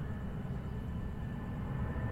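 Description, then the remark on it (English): A steady, low rumbling drone of an airplane flying overhead, holding an even loudness throughout with a faint thin whine above the roar and no voices. “Why is the plane coming from that direction?”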